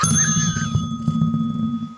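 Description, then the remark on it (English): A physical bell dinger is struck on a show, ringing with a bright, steady metallic tone that hangs and slowly fades across the whole two seconds, over a low rumbling background hum. “Now you used a ding on my show.”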